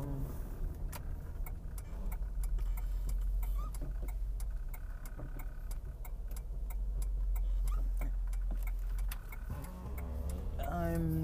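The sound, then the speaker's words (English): Steady low road and engine rumble fills the cabin of a moving car being driven to the gym on a Friday afternoon, with light ticking clicks scattered over it and a brief rising whine near the end. “I'm just driving over to the gym. Skipping the traffic.”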